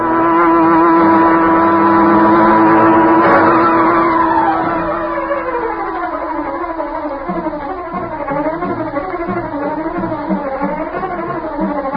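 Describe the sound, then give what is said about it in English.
A big car engine rumbles steadily as the Green Hornet's huge, sleek black car drives along a street, its pitch sliding and wavering as it shifts speed, loud before easing slightly. No voices are heard. “As Bleeker's car swung into the street and turned toward Schaefer's parking lot, a huge, sleek black car started along behind them.”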